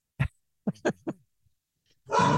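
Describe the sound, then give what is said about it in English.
A dog barks in short, sharp bursts: one bark, then a quick run of three, a pause, and a final longer, rougher bark. “You and the dog is agreeing with me.”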